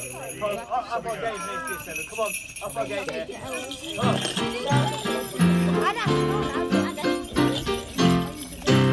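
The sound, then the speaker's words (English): Small bells jingle and rattle continuously in a bright, shimmering jangle, shaken as loudly as possible and unevenly, while several voices sing Jingle Bells and call out over them. “pick up some bells. You're the only boy that's going to have them. Go. So, shake them as loud as you can.”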